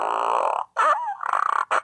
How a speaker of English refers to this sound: That's a burrito fart.